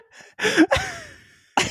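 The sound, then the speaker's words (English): A voice imitates a crowd gasping: a sharp, breathy intake of air followed by a drawn-out falling exhale, then another quick gasp at the end, fairly loud. “The crowd gasps.”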